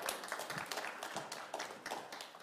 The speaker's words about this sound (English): give my volunteer a round of applause. Thank you.